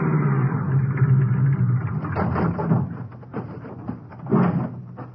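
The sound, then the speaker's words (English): A car engine hums steadily, then winds down as the vehicle pulls up and rolls to a halt at the rear of the highway patrol office in Starrett, followed by a few soft mechanical knocks and a short thump as it settles. “An hour later, I pulled up in the rear of the highway patrol office in Starrett,”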